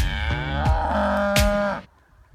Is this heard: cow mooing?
yes